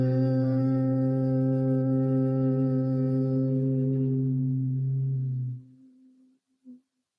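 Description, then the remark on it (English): During a guided breathing exercise, a steady, low-pitched human hum with rich harmonics follows an inhale and holds for about five and a half seconds, then fades out, followed by a brief soft blip. No talking. “And again, humming all the reactivity around this.”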